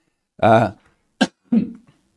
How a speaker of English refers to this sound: I don't know why I keep coughing. I'm definitely not sick.